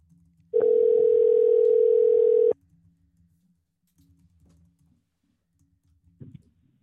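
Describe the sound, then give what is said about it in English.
A telephone rings on an outgoing call placed through a Rodecaster: one loud, steady, mid-pitched ring tone lasting about two seconds, followed by near silence with faint low background murmur and a short click. “Let's go in and call”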